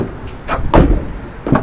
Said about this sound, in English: Just having a look at the doors and just opening up the car. So the front doors have that lovely sort of heavy front door sound. Listen to the back doors.